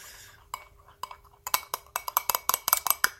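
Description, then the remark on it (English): A tall stirring spoon stirs Milo into milk in a wine glass, clinking against the glass: a few sparse taps at first, then a quick, steady run of bright, ringing clinks. No one speaks. “Now I've got my tall stirring spoon. I'll just start with the Milo. I'm going to stir it right up.”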